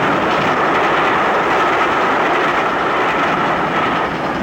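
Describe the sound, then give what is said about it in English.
A train rolls steadily over a bridge, a loud, continuous rumble with faint rhythmic clatter of wheels, unbroken for the whole stretch, with no voices. “Superman holds the bridge rigid until the train passes over.”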